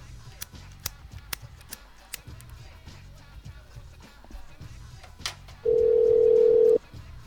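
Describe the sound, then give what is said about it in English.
A landline phone line as a second landline number is called: a series of soft clicks and ticks as the number is dialed, followed by a steady, loud dial tone that holds for about a second before cutting off. “Well, that's okay, because we've got his other landline.”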